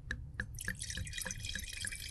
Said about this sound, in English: Oh, that was a nice Napa pour this morning. No. That's a Sonoma pour. Oh. Dignified and elegant.